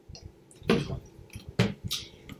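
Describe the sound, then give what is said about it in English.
Someone drinks water: two wet, gulping swallows about a second apart, with faint clicks and squishy mouth sounds between them and no talking. “1 second, I just want to drink some water.”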